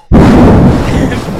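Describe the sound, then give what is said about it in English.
A voice imitates a spray of deodorant on an armpit: one loud, abrupt hissing 'pssh' that starts suddenly and holds steady for over a second before easing off slightly. “Can I guess what it sounds like when you put deodorant on?”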